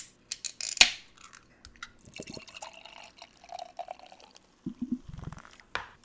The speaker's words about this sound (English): Let that rest for a second. So it poured, obviously, black as night, with a solid bit of head that's not going anywhere. I mean, this head is sticking around for ages.